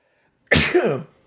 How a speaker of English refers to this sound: Hold on, I got to sneeze. Wait, it hasn't come yet. Hold on. Here it comes. I think it might pass. Wait.